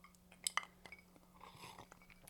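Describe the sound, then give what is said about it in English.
Glasses of a cognac-cask-finished spirit clink together in a toast: two quick, bright chimes close together with a short ringing tone, then soft handling noises and faint rustling in otherwise quiet surroundings. “So cheers,”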